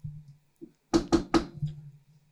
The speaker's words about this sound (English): Who can do a knock nearby that will sound good on the microphone?